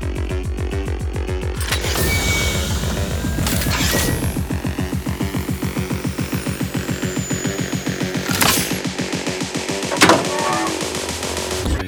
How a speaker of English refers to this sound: A large, exhausting creak as the hatch opens.